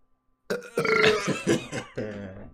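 A loud, drawn-out burp close to the mic, rumbling and croaky for about two seconds, breaking into a short second belch at the end, with no talking.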